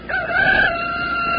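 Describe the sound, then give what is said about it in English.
A rooster crows once, loud and drawn-out, a strained, raspy call that holds a high, fairly steady pitch before trailing off, with no voices. “Well, lots of country folks still depend on this alarm clock to get them to rise and shine.”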